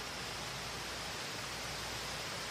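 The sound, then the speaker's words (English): A dense, unbroken chorus of countless night insects forms a steady, hissing wall of sound that fills the air evenly. There are no voices and no distinct individual calls. “The air is thick and filled with the noise of countless nocturnal bugs, at times louder or quieter as you move between them.”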